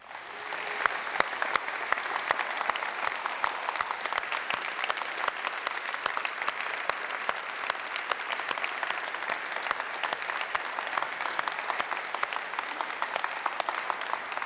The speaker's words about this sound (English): Hey, before we launch in, I just want to ask everyone who is currently serving or has served as a veteran in any of our branches of the military, if you'd stand up so we can give you a huge round of applause.